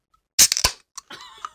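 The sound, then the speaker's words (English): Two drink cans being cracked open in unison, a couple of sharp snapping pops in quick succession followed by a brief fizzing hiss, then a short thinner fizz after a pause. “Crack our digestive helps. Yeah, actually, let's get some ASMR in here.”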